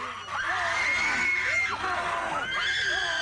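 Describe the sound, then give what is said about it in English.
A crowd of students screams and yelps continuously for a few seconds after being willingly pepper sprayed, several high, wavering cries overlapping at once, loud, with scattered shouts and laughter mixed in. “Enjoy The Sounds Of Students Getting Willingly Pepper Sprayed”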